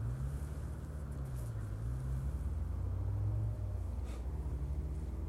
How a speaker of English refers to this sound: It sounds like a motorcycle.